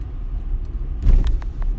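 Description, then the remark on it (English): A car engine in an AutoTrader advertisement rumbles low, swelling into a brief rev about halfway through before settling back to a steady idle; no one speaks. “You can find cars like these on AutoTrader.”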